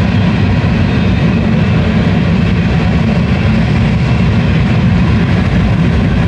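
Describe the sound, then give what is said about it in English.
A passing train fills the air with a loud, steady low rumble and broad roar that holds constant throughout, with no voices audible over it. “The cigars there, the fucking train's coming through.”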